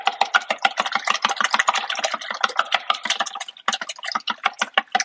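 A fork whisks a broken egg in a bowl, making a quick, steady run of bright clicking taps against the sides, with one brief pause partway through. No one speaks.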